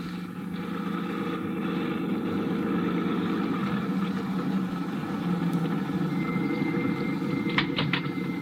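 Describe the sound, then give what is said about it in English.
A car engine hums steadily as the vehicle drives along, a continuous low rumble at even loudness throughout, with a couple of faint clicks near the end and no voices. “I've got my car right downstairs.”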